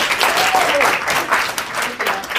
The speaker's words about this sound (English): So everybody, please give me a huge round of applause for my friend, Gary V.